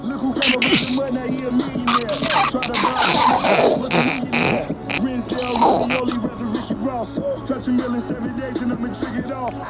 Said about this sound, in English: I was trying to do all that to hold my cough, but unfortunately that didn't happen, right? I mean, obviously. Fucking started coughing. But that noise was badass. That was priceless noise, though. That's epic noise.